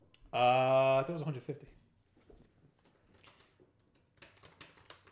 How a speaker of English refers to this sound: Just typing.